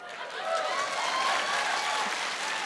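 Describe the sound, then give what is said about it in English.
Audience applause, a dense, steady wash of many hands clapping that holds at an even loudness for a few seconds without any talk over it. “Don't applaud her, she knows. Save that applause for when I get it right.”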